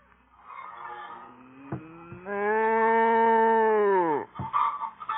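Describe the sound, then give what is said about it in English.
A cow in a barn on a work farm lets out a single long, loud moo that holds steady and then drops off at the end, set against a quieter, rustling barn background. “Stand still, cow, will you?”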